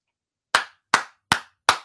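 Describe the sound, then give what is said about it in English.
Four sharp hand claps at a slow, steady pace after a brief silence, each a crisp smack that fades quickly, applauding a performer after a performance. The claps sound like a single clapper rather than a full crowd, with no talking. “Everybody give him a clap. Give … a clap”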